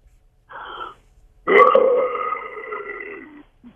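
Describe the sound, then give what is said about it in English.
A person imitates a lion's roar: a short breathy huff, then a long, loud, throaty growl that sustains for about two seconds before fading, with no speech. “Let me hear you roar like a lion right now.”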